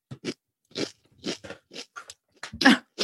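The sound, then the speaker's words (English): Loud, close-up crunching of a crisp snack being chewed, a series of sharp irregular bites and crackles with brief pauses between them, no talking. “People who have like hearing who are sensitive to sounds are going to hate how closely I'm chewing to the mic.”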